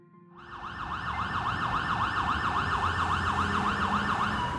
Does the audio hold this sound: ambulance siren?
yes